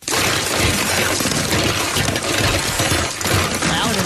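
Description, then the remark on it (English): Loud, continuous rummaging through a cluttered junk drawer, with dense clattering and scraping of small hard objects for about four seconds and no voices. “It is a little loud in the junk drawer.”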